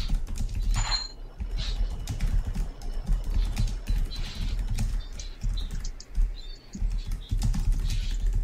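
Intense computer keyboard typing: a rapid, continuous clatter of key clicks that keeps up for the whole stretch at a fairly loud, even level, with no voices.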